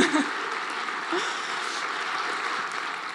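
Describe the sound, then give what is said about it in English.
An audience applauds steadily for several seconds, a dense, even wash of many hands clapping at a constant moderate loudness, with no voices over it. “You can applaud for love.”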